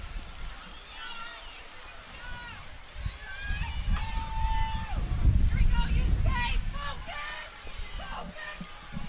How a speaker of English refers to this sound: the rain is starting to come down, and it's coming down hard. We were expecting some rain earlier, and now it's really coming down. In fact, it's blowing everything under the canopy where we are. And it is an absolute downpour right now.